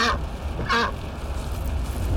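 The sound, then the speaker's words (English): A duck quacks twice, short nasal calls about half a second apart, over a steady low rumble like a moving car's interior. The duck is riding in the back seat of a car. “Oh, and we brought the duck.”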